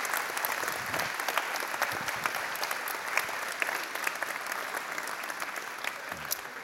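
An audience breaks into steady applause as children are sent out, a dense, continuous patter of many hands clapping at an even level for several seconds with no talking.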